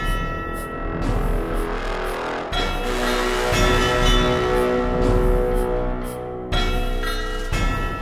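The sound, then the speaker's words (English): A dense peal of chiming bells rings continuously for several seconds, with overlapping metallic tones that sustain and layer, punctuated by a few fresh strikes. No voices. “So let's listen to some bells. Let's listen to some bing bongs, and then it'll be just us talking once again.”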